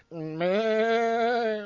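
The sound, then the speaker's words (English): A person imitates a goat's bleat with one sustained, wavering vocal cry that rises slightly and holds steady, fairly loud, with no other talking. “Could be a sheep or a horse. No, it's a goat, dude.”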